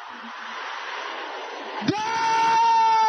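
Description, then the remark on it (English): A large group of voices shouts a prayer together in a loud, continuous roar, then one strained voice rises above the crowd into a long, sustained high cry. “Brothers, shout it louder than the sisters.”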